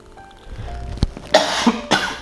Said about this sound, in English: Oh man, this cough. Okay, so I have this like nasty cough, but I haven't like been in contact with anybody like that or anything.